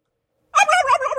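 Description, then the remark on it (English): After half a second of silence, a person's voice bursts into a loud, warbling turkey gobble imitation that runs steadily to the end, alone with no other sounds. “it's a person pretending to be a turkey, I think”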